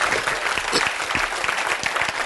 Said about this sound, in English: Jeremiah, I'll wait while you clap your hands here.